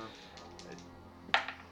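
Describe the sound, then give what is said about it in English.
A sharp clack of percentile dice rolled onto a hard tabletop during a tabletop role-playing game, followed by a quieter second tap as they settle, heard over faint background murmuring. “I have to roll percentile dice.”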